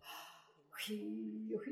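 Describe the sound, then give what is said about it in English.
A voice imitates the characteristic gasp a keener makes to mark the end of a verse in keening: a sharp, breathy gasp, a quick rushing intake of air that slides into a short voiced wail, heard alone. “Keeners would take turns in a sort of handoff process, marking the end of their verse with one of these syllables or a characteristic gasp.”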